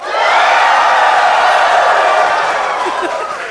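A loud, sustained roar of a live audience cheering and whooping, a dense wall of voices holding steady for several seconds before easing slightly at the end.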